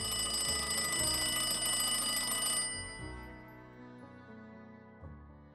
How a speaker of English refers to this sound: Her gratitude barely lasted the night, as she was startled awake by the high-pitched ringing of her telephone.